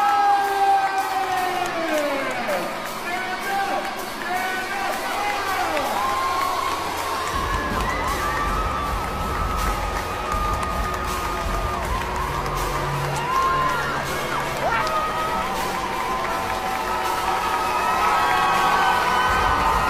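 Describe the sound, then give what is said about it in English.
A large crowd screams and cheers loudly and continuously, with high shrieks and whoops over a dense roar and scattered applause, in a church as a drag queen marches down the aisle. “Okay, so there's the drag queen marching down the aisle of the church to the sounds of the screaming throngs applauding.”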